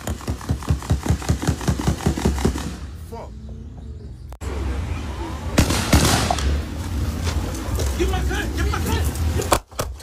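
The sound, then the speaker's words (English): A rapid string of sharp gunshot cracks in Shreveport fires in quick rhythmic succession for a couple of seconds, then stops, followed by a brief lull and a stretch of rumbling, noisy background with another loud burst. “Ooh, the straight gunshots.”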